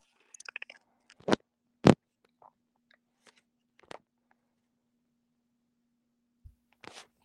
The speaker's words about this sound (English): It does crunching ice. We're shaking the ice over here